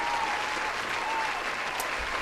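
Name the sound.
round of applause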